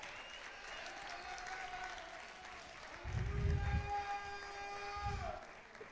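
A church audience applauds steadily for one of the church's pastors as she is called forward to sit for a Q&A, a dense wash of clapping with cheering on top, and it swells louder midway with bursts of low rumble and whoops.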